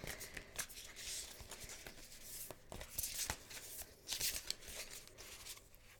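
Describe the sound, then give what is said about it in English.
Shuffling of a deck of oracle cards before pulling a card: steady papery rustling and soft slaps, with sharper crisp bursts now and then over six seconds. No one speaks. “Now I'm going to pull from the Starseed Oracle deck. Just giving it a shuffle.”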